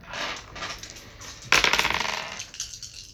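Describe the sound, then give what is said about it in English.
Several dice clatter across a hard tabletop, a loud burst of rapid clicking and bouncing that settles into a few scattered taps as they come to rest. “Does anyone want to roll their arcana and their gnosis to see what just happened?”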